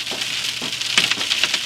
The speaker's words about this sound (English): Wow. That hail sounds like fucking snowballs. This is cool.